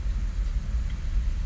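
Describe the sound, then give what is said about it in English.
A deep, steady rumble of a big train passing a park parking lot in perfect weather, heavy low-end roar holding constant throughout with a faint hiss above it and no voices. “oh, there's a big train coming. Big train.”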